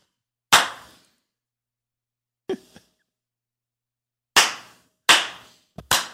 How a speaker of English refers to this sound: 3, 2, 1, go. We did the clap, right?